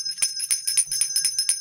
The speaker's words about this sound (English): ring the bell